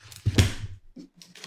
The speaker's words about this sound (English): And now let's close the book.